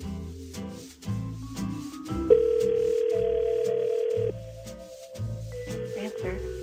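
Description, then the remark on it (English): A telephone ringback tone on an outgoing call to a competition listener's phone: one steady, prominent electronic tone lasting about two seconds, heard over a rhythmic music bed with no talking. “One of our listeners who's questioned or email has been taken, phone call or email has been taken, is now on tenterhooks because their phone is about to ring.”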